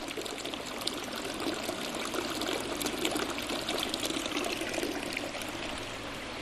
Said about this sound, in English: a hand-painted mural with running water coming through the museum